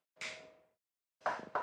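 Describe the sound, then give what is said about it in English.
Knocking on a door: one solid rap, a short pause, then two quicker knocks close together. Fairly loud, with no voices. “I knock on the door first.”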